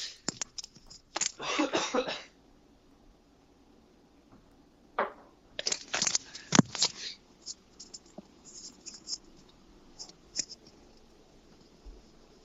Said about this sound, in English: hold on, I have to use that amazing throat spray again. Marking time. Go do your throat. Yeah, hold on.